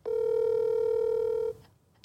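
A telephone tone sounds as one steady, loud electronic beep for about a second and a half, then cuts off into near silence. No one speaks.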